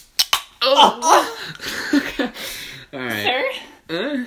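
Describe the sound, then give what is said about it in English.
An energy drink container cracks open with a couple of sharp snaps right at the start, then voices talk loudly over the rest. “Let's crack that shit.”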